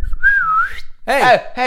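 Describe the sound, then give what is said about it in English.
A person whistles one short, clear note that wavers slightly in pitch, to get attention, followed by a couple of brief, loud vocal sounds. “That's my whistle.”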